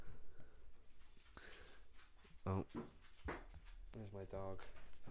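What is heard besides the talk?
dog whimpering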